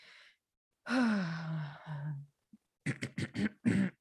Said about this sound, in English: You clearing your throat, I'm scared.